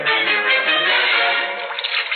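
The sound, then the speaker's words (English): Hot, steaming water runs steadily into a bathtub, a continuous rushing and splashing that holds at a fairly loud, even level throughout, with no voices. “Better come while the water's hot.”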